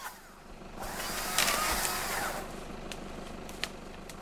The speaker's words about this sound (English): Mark even had to pull a chainsaw out of the back to remove a tree that was in the way